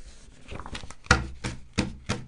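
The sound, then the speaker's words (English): Papers being shuffled: a soft rustle builds, then four sharp, crisp bursts of handling and tapping arrive in an uneven rhythm. No one speaks. “That's me shuffling my papers, buying a little time to figure out how I'm going to get out of this bit.”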